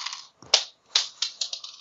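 Dice clatter across a hard surface in a quick, irregular burst of sharp clicks and taps as they are rolled in a game, fairly crisp, with no voices during the roll.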